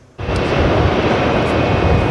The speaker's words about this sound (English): Check out this drag race. The truck on the right is a conventional mining haul truck. But take a close look at the one on the left and notice the bars connecting to an overhead power line.